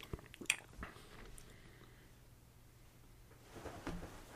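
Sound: sipping a sour beer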